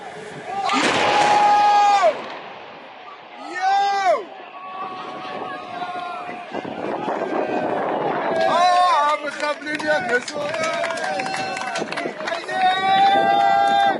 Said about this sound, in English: Those IDF soldiers were applauding the demolition of a school in northern Gaza in early December. It lay just a mile from the Israel-Gaza border.